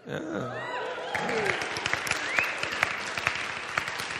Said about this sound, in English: Thank you for clapping. It was so hard for me to stay married to this amazing, beautiful woman. So yeah, thanks for that.